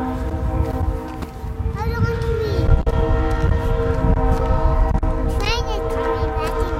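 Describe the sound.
A train rumbles past as its horn holds a long, steady blast through the whole stretch, loud over the clattering roar, with faint voices in the background.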